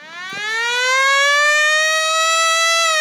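A loud civil defense siren winds up and holds a steady, rising wail with rich harmonics, sustained for a few seconds with no voices over it.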